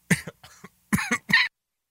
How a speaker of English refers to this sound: Man, this is the second show that I've coughed into the microphone. Somebody needs to slap me because I don't know how to hit the button quick enough. So I apologize about that.